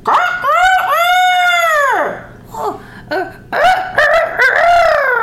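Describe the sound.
A voice imitates a rooster's crow: one long, loud, arching call, then a brief pause and a few shorter, choppy crowing bursts.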